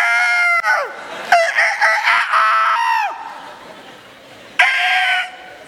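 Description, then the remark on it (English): A rooster crows loudly: a long, strained cock-a-doodle-doo that breaks off raggedly, then after a short pause a second, briefer crow. “And our rooster never got his cock-a-doodle-doo very good.”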